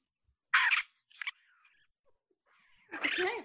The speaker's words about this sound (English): Here are the sound of fighting raccoons.